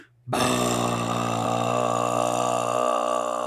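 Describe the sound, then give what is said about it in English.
A voice imitates one long, loud belch, a sustained, rumbling, buzzy eructation that starts abruptly after a brief pause and holds steady for about three seconds. “until he just hits himself in the stomach, and then leans in forward and just releases a sonic sound wave of belch just out towards the enemy, like just.”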